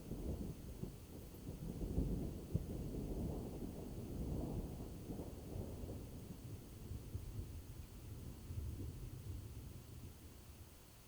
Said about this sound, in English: The rolling sound of thunder. And when you look up, you see the lightning burn and flash and dance across the horizon out there beyond on the dark plains.